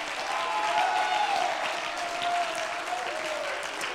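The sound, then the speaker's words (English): A large worship audience claps steadily and cheers together in praise to God, a dense wash of applause with a few voices shouting over it, sustained and fairly loud for several seconds. “Would you clap your hands unto the Lord one more time and give God one more big shout of praise?”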